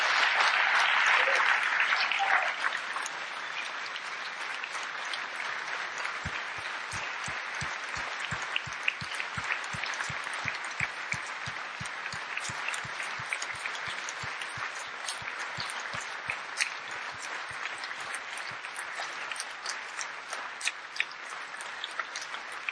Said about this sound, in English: I want us to honor these guys and say thank you for contending faithfully, long and hard in the same direction, serving our King and serving this mission and our togetherness. Can you put your hands together? Let's honor these guys.